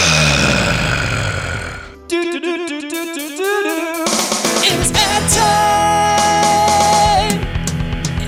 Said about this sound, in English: But out from the snow comes a young remoras, and it rips out and screams at you.